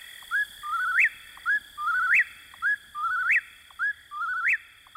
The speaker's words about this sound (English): It remains, as Thoreau described, a bird of the night side of the woods, where you may hear the whippoorwill in your dreams.